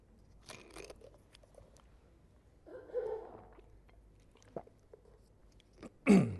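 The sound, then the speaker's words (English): Someone giving a talk on Romans pauses to quietly take a sip of water: soft mouth clicks and faint swallowing sounds, a muffled gulp midway, then a sharper breathy burst at the end. No one speaks. “And then now he moves on to this question of, if God is a God who loves us so much that nothing can separate us, excuse me, I might just drink a little bit of water.”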